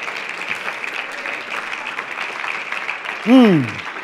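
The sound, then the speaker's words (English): An audience claps their hands in praise to the Lord in a dense, steady patter, and near the end a single voice lets out a loud shout that rises and then slides downward. “Somebody clap your hands and just shout a little bit to the Lord now.”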